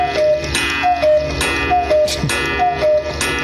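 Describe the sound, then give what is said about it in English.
A home cuckoo clock, driven by pine-cone-shaped weights on chains, calls out its two-note cuckoo four times in steady succession at 11 o'clock, with sharp mechanical ticking running underneath, clear, with no one talking. “So we're talking about how my life has changed forever because we got a cuckoo clock.”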